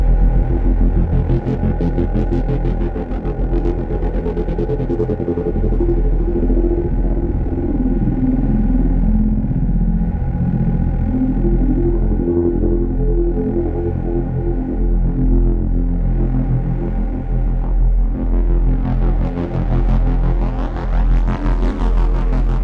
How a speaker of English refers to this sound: I think you can never beat an analog synth for that kind of stuff.